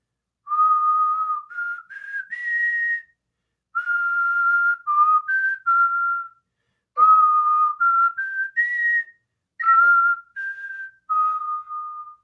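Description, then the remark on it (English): A clear whistled tune played over a camp PA system right before taps, a melody carried in four unhurried phrases of sustained and stepping notes, each separated by a brief pause. “He would get on the PA system and whistle this classic.”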